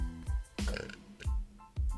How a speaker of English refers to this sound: I gotta burp again.